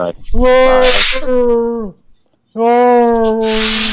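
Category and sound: vocal imitation, person imitating a dog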